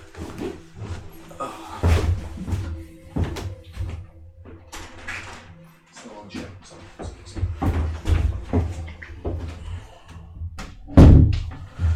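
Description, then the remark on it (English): A door opens and closes with a few solid thumps and clatters as friends arrive, amid shuffling movement and faint background voices. “Just still at a friend's place, and the door, like other friends, were basically arriving because I'm at a client's place”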